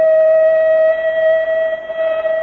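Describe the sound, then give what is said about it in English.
The Central Aircraft factory whistle blows for the end of the daytime shift, one loud, steady, mid-pitched tone held unbroken throughout with a slightly rough, buzzy edge. No voices are heard. “The whistle that means the end of the daytime shift at Central Aircraft.”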